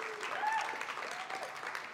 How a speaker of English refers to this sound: We're going to honor these four guys today, and I've got questions for them. Are you guys ready to hear their answers? Yeah? Well, give them one more big welcome and a round of applause.